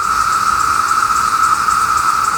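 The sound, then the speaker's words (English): Loud cicadas fill the air with a steady, unbroken high-pitched buzzing drone that pulses faintly but never pauses, with no voices present. “Some cicada songs are louder than 120 decibels, which is the same decibel level as a chainsaw, if you're like 3 feet away from the chainsaw.”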